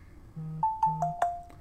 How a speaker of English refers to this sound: My phone's going nutty.